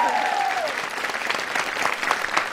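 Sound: audience cheering and applauding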